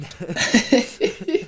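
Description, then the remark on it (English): A loud cough straight into a microphone just as recording started, a few harsh, breathy bursts tumbling together over about a second and a half. “I just started recording and I just coughed straight into the mic.”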